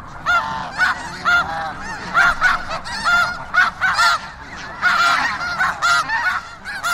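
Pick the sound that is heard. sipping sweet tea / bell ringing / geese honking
geese honking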